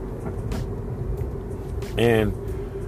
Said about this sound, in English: I'm in the car right now, so.